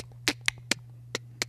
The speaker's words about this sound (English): But that's not the knock you do when you're just looking for packages. That's the knock you're doing when you're trying to drop off a package.